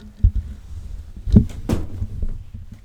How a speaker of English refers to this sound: Hold on one second, I'm gonna close the door.